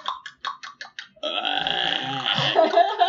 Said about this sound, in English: That is a buck breeding sound. Yeah. So that's probably what he sounds like.